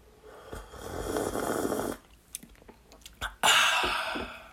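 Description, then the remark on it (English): Drinking sounds as someone sips water and tea: a long airy slurp, a few small clicks and swallows, then another breathy sip, with no talking. “Always nice to have just like a few seconds of me not talking and me drinking water. I also have tea.”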